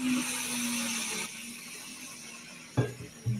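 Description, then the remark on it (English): A high-revving 5-inch pro stock drag racing engine roars loud and steady, then drops back, followed by a couple of sharp throttle bursts near the end. No one speaks. “But fans, that's a 5-inch pro stock.”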